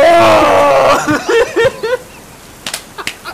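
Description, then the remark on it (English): A woman, as the character Lady Winry, lets out a loud, high-pitched scream lasting about a second as the light shuts out on a dark, stormy night. The scream breaks into choppy bursts of laughter, followed by a few faint clicks. “The light shuts out, and Lady Winry screams.”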